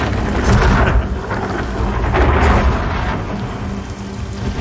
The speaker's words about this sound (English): All right, so obviously it's raining.